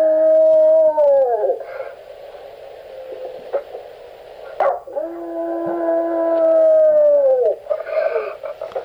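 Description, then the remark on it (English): A pet dog howls in two long, sustained wails, each holding a steady pitch before sliding down at the end, loud with no talking. “Do you live with the wolves, oh.”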